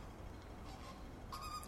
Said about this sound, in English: I think these sounds may be the monkeys and birds, and they may be located in the botanic gardens at mid-levels, which is much further uphill from where I am now.